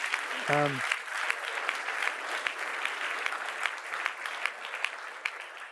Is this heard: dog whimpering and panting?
no